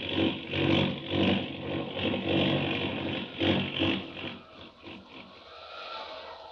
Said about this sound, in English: That plane, it's out of control, falling fast.